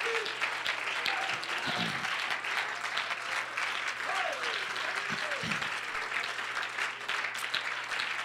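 A church audience claps their hands in praise to the Lord, in sustained, dense applause, steady and loud throughout, with faint voices and cries rising underneath the clapping.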